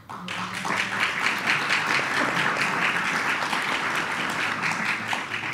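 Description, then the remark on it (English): A crowd at an event in the Knapp Center in downtown Lansing bursts into a sustained round of applause for local merchants, dense overlapping claps holding steady and loud for several seconds with no talking over it. “They totally deserve that round of applause.”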